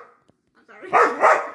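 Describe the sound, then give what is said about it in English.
A female dog lets out two loud barks in quick succession, preceded by some faint, brief rustling and murmuring sounds. “She never barks this much.”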